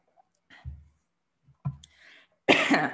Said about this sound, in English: Let me clear my throat.